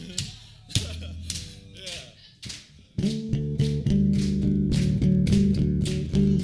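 An audience claps together in a steady, even rhythm, sharp bursts about twice a second, growing louder as a sustained tonal backing comes in partway through.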